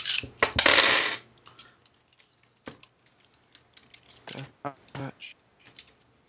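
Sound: dice rolling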